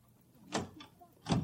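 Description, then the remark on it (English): Someone tries a locked door in broad daylight: a few sharp rattles and clunks of the handle and frame, spaced irregularly, with a heavier thud at the end and no voices. “Why would anybody lock a door in broad daylight?”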